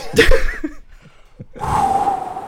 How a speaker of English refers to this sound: Exterior Isla Nublar Beach. Day. Survivors gather. The roars of dinosaurs in the distance.